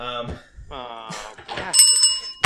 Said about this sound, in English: And there it is. I got stuck in all these cords trying to get to my bell.